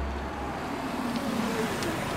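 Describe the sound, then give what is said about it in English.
A car engine hums steadily with road rumble and a faint rising tone, as if the vehicle is pulling away and driving off at moderate volume, with no voices. “I remember as I rolled away, my gaze fixed on my reflection in the passenger window.”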